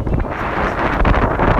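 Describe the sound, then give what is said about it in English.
Steady, loud wind buffets the microphone on a water-covered beach in the rain, with a deep rumbling roar and a broad hiss, gusting slightly but never letting up. No voices are heard. “And you are probably hearing some wind.”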